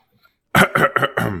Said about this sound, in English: All right, so I make the cough noise that tells everybody it's beginning, and that's when I do the transition, and then we do the intro, and then we start telling stories.